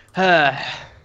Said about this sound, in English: that was a sneeze.